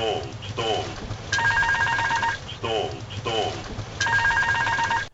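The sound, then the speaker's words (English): Air France 447 cockpit stall warning: a synthetic male voice calls out "stall" in English twice, then a loud, shrill, rapidly chirping cricket tone sounds for about a second. The whole cycle plays twice. “Stall is called out in English by the male voice alarm, then a loud and annoying sound called a cricket.”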